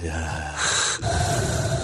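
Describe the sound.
Heavy breathing into a microphone with a harsh, hissing rasp, like a respirator: a long drawn inhale, a brief pause, then a loud, rough exhale, made by a voice imitating Darth Vader's breathing mask.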